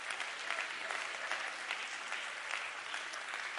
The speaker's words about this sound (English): Come on, clap your hands to the Lord and give him some praise.